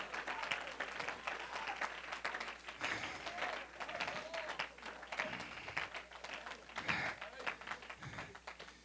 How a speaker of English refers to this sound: Come on, clap your hands and praise him right now.